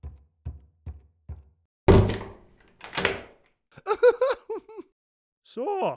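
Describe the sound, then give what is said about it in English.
Four soft, evenly spaced thuds lead into the noisy scrape of a door being opened, followed by a second rough swish and then some brief, light giggling. “Not like that, mind, it's 1671, all right, so I'm going to leave the door open.”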